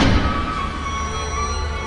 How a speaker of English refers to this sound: Well, here I am. There's a door. He opens it.